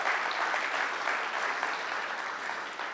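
Steady, dense audience applause fills the whole stretch, a crowd clapping continuously at an even, fairly loud level with no voices over it.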